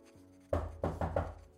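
knocking on a door

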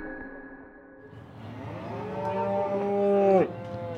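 cow mooing

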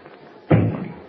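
knocking on a door

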